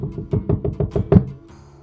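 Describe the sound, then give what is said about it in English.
A quick, steady series of about eight firm knocks on the wooden door of a jail at night, fairly loud, followed by a brief quiet moment. No voices. “I was just putting out the lantern to get some rest when there was a sudden knock at the door.”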